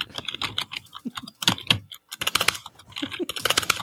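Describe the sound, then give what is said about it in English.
Rapid, uneven typing on a computer keyboard, a flurry of sharp clicking keystrokes with a brief pause in the middle before the tapping resumes, with no voices, as someone types in a word of about seven letters. “I don't know why I get a kick out of this typing.”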